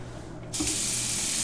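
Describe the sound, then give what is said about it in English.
A kitchen faucet is turned on after a brief quiet moment, releasing a sudden, steady rush of running water that stays loud until the end, with no one talking. “Every time a person turns on a bath or kitchen faucet in a home, apartment, or business, or flushes the toilet, all that goes into the sanitary sewer pipes crisscrossing below the streets of Lexington.”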